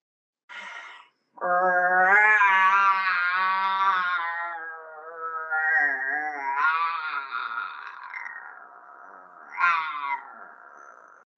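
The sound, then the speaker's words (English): A person doing a somatic roaring exercise lets out a brief vocal burst, then one long, loud, strained roar lasting several seconds, its pitch wavering and rising in a final surge before fading, with no talking. “And remember, your roar can sound different than mine.”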